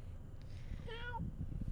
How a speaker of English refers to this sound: Cat